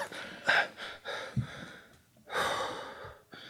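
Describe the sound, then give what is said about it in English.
A voice imitates coughing and sputtering: a few short, breathy bursts and gasps, then a longer raspy exhale, with no words spoken. “You channel your healing energies through to Marn, and he just coughs and sputters a bit.”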